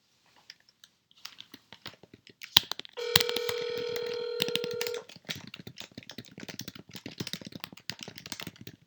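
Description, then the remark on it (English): Sharp clicks of buttons being pressed on a house phone keypad to place a call at off hours, then one loud, steady electronic tone holding for about two seconds, followed by more rapid clicking and rattling. “House phone.”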